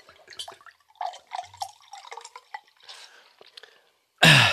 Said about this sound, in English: And now listen to this pour.